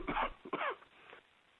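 Two quick, harsh coughs, the second following right after the first, then a brief faint rasp as things quiet down. No one is talking.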